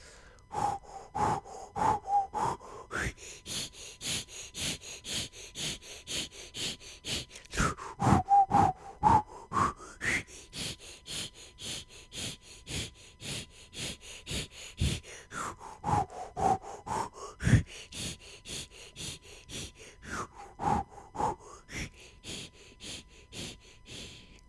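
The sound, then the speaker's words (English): A group breathes hard in a fast, steady rhythm, sharp exhales pulsing over and over, while drawn-out vocal tones rise and fall in long swoops above the panting. “Or you could just listen to the sounds and the breaths that you're hearing on this recording.”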